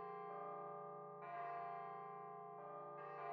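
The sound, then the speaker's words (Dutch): Church bells ring out with a rich, sustained hum, new strikes landing about every second and a half while the earlier tones keep reverberating beneath them; no one speaks. “of de zinderende naklank van kerkklokken op een rustige zondagochtend.”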